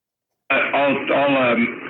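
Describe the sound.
A caller's voice comes through a thin, band-limited phone line with an echoing, smeared quality, continuous and fairly loud for a couple of seconds after a brief silence.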